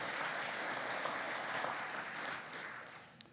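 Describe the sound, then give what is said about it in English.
A crowd applauds steadily, a dense wash of many hands clapping at once that holds fairly loud, then gradually thins and softens toward the end with no voices over it. “Yeah, you can clap. Go right ahead.”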